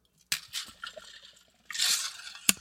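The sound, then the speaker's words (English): Sounds of someone taking a drink of water: a few clinks and liquid sloshing, a longer gulping swish, then two sharp clicks as the container is set down. No one speaks. “Sorry, I needed to get some water there.”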